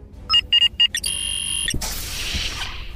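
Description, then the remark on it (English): An electronic alarm gives three quick, sharp beeps, then holds a steady loud tone before a rushing, hissy noise takes over. No one speaks. “General, the silent alarm just”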